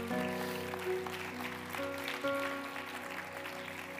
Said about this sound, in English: Let's stand together today. Can we just, before we go home, just kind of clap our hands to Jesus one more time?